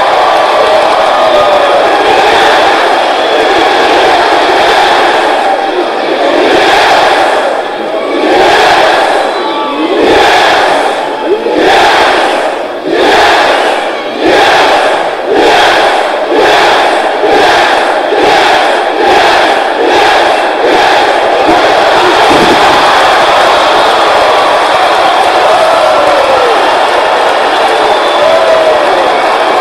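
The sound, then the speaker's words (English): A huge pro wrestling arena crowd chants "yes" over and over in loud, rhythmic unison shouts. The chant speeds up as it goes, riding on a constant roar of crowd noise. “And it's kind of because of the story that is just some pro wrestler named Daniel Bryan, that when I'm asked if there's still hope, I don't think that there's any more appropriate answer than to scream yes.”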